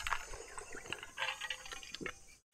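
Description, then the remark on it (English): Ice cubes clink softly against a drinking glass of cold water as the liquid sloshes, several light, irregular taps, quiet, with no one talking. “Oh, you guys can hear the ice cubes. You can hear the ice cubes in my...”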